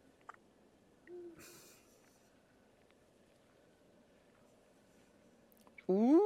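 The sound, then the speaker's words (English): A single low, soft owl hoot sounds against a quiet night backdrop, followed near the end by a person's voice rising in a drawn-out exclamation. “I hear them owls going, whoo, whoo,”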